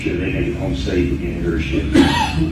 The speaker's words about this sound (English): All right, you just heard the cough. I'm not going to continue that. There's more coughs in that sound bite. He just was coughing his head off down there. So he's not well.